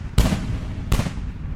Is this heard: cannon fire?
yes